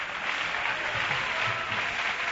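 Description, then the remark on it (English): A crowd at a camp meeting claps steadily to worship the Lord, a dense, continuous wash of many hands striking together with no individual beats standing out, fairly loud and sustained throughout without talk over it. “Clap your hands again and worship the Lord.”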